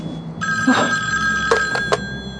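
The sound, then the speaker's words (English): An old-style telephone bell rings loudly and steadily late at night in the Twilight Zone story Night Call, its sustained metallic tone broken by a few quick rattling bursts near the end, with no one speaking. “Oh, someone calling? At this hour?”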